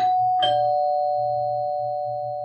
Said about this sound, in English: From downstairs, the doorbell rang.